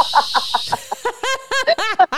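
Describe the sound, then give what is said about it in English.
Someone vocally imitates the little metal whistle on top of an old-school pressure cooker: a breathy hiss with quick sputtering pulses, building into loud, shrill, wavering bursts that bend up and down in pitch. “It's you know the old school pressure cookers that your grandmothers used to have with the whistle on top?”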